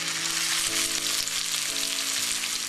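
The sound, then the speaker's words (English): Blintzes sizzle steadily in a frying pan on a stove at medium heat, browning on one side: a dense, continuous crackling hiss, with a faint low hum underneath and no voices. “Take your frying pan. Give them a chance to get brown on one side, and then you'll turn them over.”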